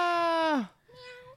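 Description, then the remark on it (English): A voice imitates a cat meowing: one loud, drawn-out meow that bends downward at the end, followed by a softer, shorter second meow. It is clear, with no other talk. “Thank you for the cat meow.”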